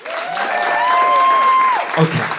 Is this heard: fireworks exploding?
no